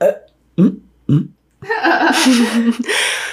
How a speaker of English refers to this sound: I had to burp.